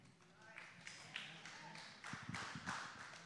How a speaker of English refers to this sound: Oh, that was the most pitiful hand clap I ever heard in my life.